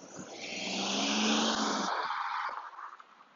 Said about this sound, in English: Car, sorry.